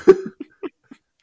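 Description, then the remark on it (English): A voice imitates an exaggerated yawn, mimicking the noise a somnambulist character in a silent film might have made: one strained, voiced burst, followed by three short grunting puffs that trail off into quiet. “Could you imagine, like, on the set, in the sound that the somnambulist made was like, or it's just like the most ridiculous yawn.”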